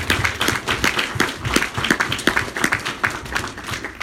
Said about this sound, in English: He provided a very valuable donation at the end of the year, which is going to kick off what our housing program looks like for 2020. So if we could all give him a round of applause.